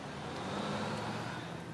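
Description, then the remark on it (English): A bus engine rumbles with broad road noise as the bus pulls away in Los Angeles, holding a fairly steady level throughout the short stretch, with no one talking. “Oh, it looks like you know how to scare away a bus.”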